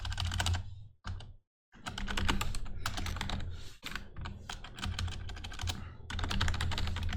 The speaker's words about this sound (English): I'm pretty sure people can hear my fucking keyboard typing and whatnot, but I can barely hear it. It's not like super, super loud.